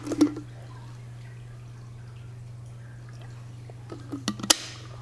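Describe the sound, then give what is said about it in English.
Someone drinking from a glass of water: a light glassy clink at the start, a quiet stretch over a steady low hum, then a few soft clicks and a knock near the end. “Let me get a drink of water though here.”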